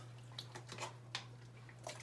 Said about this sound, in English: So, just gonna give this some water.